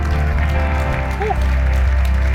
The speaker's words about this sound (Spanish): Vamos, podemos darle un aplauso más fuerte que eso al Señor. Come on, church.